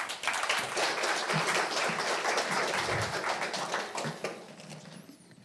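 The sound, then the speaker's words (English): An audience applauds steadily to welcome a speaker invited up to talk about soaring and birds, many hands clapping in a dense, even patter at moderate volume that thins and fades out near the end. “So why don't we give John a round of applause.”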